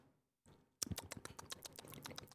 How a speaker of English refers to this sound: No, I can hear the scissors doing their job. It's weird how they're making a different sound than they were making before. Well, now they're cutting something. They're not just hitting each other. They're not angry scissors.